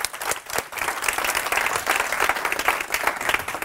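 An audience breaks into sustained applause, many hands clapping at once in a dense, steady patter that stays fairly loud throughout with no voices standing out.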